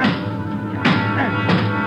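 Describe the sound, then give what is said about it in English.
Two sharp metallic thumps, a little over half a second apart, over a steady mechanical hum, as the bent control lever of an elevator is kicked twice. No one speaks. “All right, kick the control lever. Kick it, Ben.”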